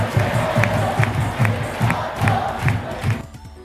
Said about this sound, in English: Depending on the number of people and the number of times the buttons are tapped, the volume and excitement will increase. Viewers can also clap freely along with chants.